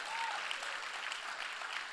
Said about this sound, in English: If one of us claps, we all got to clap.